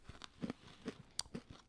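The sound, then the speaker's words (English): Loud crunching of a garlic-and-onion flavored crunchy bean snack being chewed by two people tasting it at the same time, with about half a dozen sharp, uneven crunches in quick succession and no talking. “So we're both going to try the garlic and onion right now, right?”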